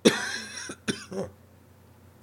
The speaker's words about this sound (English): Sorry, I told you there would be, well, maybe I didn't tell you, there would be coughing and there would be wheezing, but we're getting through it.